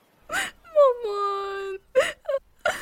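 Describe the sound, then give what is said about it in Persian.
A voice imitates a crying child, voicing a very small fish crying in a dark, damp place in a story, fairly loud: a short sob, then a long drawn-out wail that dips and holds, followed by a few more sobbing bursts. “دید همه جا تاریک و مرطوب و صدای گریه میاد.”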